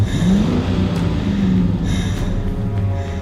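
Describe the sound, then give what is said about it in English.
A police car's engine roars steadily, its low hum shifting slightly in pitch as it revs through a sharp U-turn toward the end of a driveway, with a continuous rumble and no voices. “Cuts the steering wheel, making a sharp U-turn toward the end of the driveway.”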